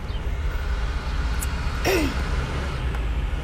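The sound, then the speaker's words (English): A large freshwater tanker truck rumbles past on a road in southwestern Pennsylvania, its steady low engine and tire drone filling the scene, with a brief hiss and squeal partway through. No one speaks. “And there is a freshwater truck. We have a lot of these tanker trucks around here now, guys.”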